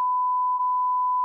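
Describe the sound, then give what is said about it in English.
A single steady censor bleep, a pure mid-pitched beep held evenly for just over a second and then cut off abruptly, with no voices underneath. “You could have to bleep that.”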